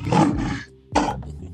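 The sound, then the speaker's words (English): A loud lion roar bursts out twice in quick succession, a long rumbling growl followed by a shorter snarling roar, unaccompanied by any talking. “We got the lion. Let me get my lion.”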